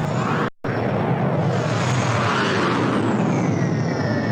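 A loud, close airplane roar fills the whole few seconds, a dense rushing jet noise with a high whine gliding downward, broken only by a split-second dropout near the start.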